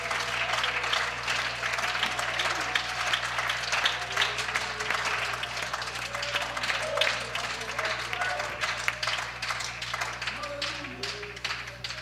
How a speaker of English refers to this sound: Can we give God a hand clap of praise right now?